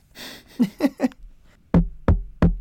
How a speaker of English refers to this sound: Sounds like there's a knock on the door. Might have a visitor.